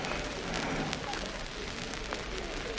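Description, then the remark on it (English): An underground train on its way towards Cockfosters drawing up at the end of a very long platform crowded with people taking shelter: a steady, loud rumble and broad hiss throughout, with a few faint clicks and squeaks above it. No voices. “You've just heard it draw up then.”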